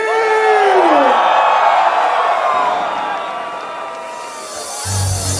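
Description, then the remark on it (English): A loud, dense festival crowd screams and cheers continuously for a DJ, with whoops and yells rising over a broad roar that swells and eases slightly before a thumping beat cuts in at the end. “From the front to the back, to the left to the right, all the way from the UK, I want you to make the most amount of noise for the one, the only, the legend, bringing it to you, Xtreme.”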